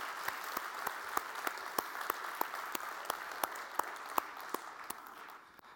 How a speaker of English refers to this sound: So let's applaud our actors. So thank you so much.